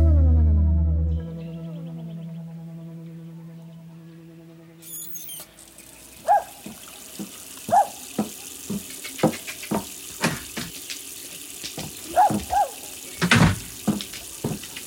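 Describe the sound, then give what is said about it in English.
A short musical sting fades out, then a tap gushes steadily into a sink, a constant splashing rush broken by scattered drips and small clinks. “Hey, what have I told you about wasting water?”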